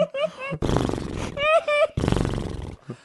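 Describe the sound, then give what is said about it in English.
A person imitates a horse's whinny: two wavering, high-pitched neighing bursts alternating with rough, roaring vocal growls, loud, all within about three seconds. “The four men and the horse go up to the lifeless body. The horse says.”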